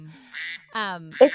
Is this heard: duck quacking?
yes